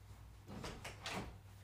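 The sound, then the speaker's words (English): A door being opened to let a cat in after it scratched on the door, a short series of soft scraping and clunking sounds from the latch and hinges, fairly quiet, with no voices. “I'm going to let my cat in because he just scratched on the door.”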